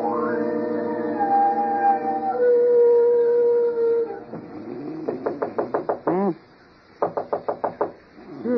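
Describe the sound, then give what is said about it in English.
A long, wavering howl-like tone gives way to two quick bursts of rapid knocking on a bedroom door, about five or six sharp raps each, fairly loud, with no talking. “Somebody's at the door of this iceberg they call a bedroom.”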